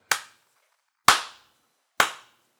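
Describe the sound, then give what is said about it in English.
Three loud, sharp hand claps spaced about a second apart, a deliberate slow clap with each crisp smack decaying quickly into silence before the next. No voices. “Slow clap.”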